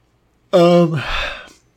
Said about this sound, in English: Man, you yawn in the mic, I'm going to yawn in the mic.